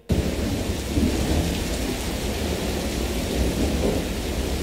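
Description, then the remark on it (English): Steady, dense rainfall with a deep rolling rumble of thunder underneath, continuous and fairly loud for the whole stretch, no voices present. “Okay, that sounds, it's not raining money, but...”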